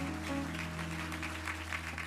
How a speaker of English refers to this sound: Don't we have a lot to be thankful for? Let's give our young people another round of applause.